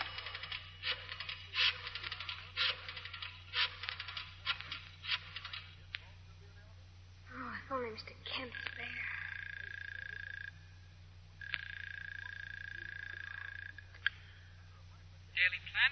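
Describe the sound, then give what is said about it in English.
A coin drops into a pay phone in a telephone booth at a railroad station and a number is dialed in a rapid run of clicks, followed by two long, steady ringing tones on the line. “Carefully, she examines the crisp $10 and $20 bills, then inserts a coin in the phone slot, dials a number.”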